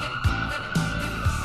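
An ambulance siren sound effect: a steady, piercing siren tone holds one pitch throughout, punctuated by regular low thumps and bursts of noise about every half second, with no talking.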